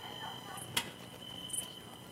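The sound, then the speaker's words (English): Cricket sounds played at low volume in a church chirp faintly in a steady, unbroken high trill that carries through the whole moment, with one sharp click briefly cutting in near the start and no talking. “You hear the crickets?”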